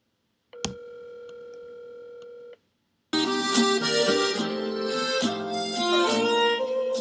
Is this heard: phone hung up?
yes